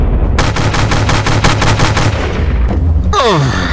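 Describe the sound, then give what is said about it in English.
A rapid burst of automatic gunfire as a shooter runs from car to car tossing grenades: roughly a dozen sharp, loud cracks in quick succession over a low rumble, followed by a brief lull and a high, falling whine. “I run from car to car, tossing the grenades and shoot their heads down.”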